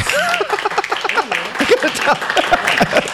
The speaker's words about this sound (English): This is where you applaud. Applaud loudly.